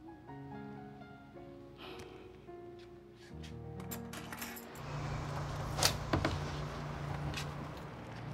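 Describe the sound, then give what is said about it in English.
A door chain lock is worked with metallic rattles and a few sharp clinks over a steady low tonal hum in the background. “The chain lock works fine, too.”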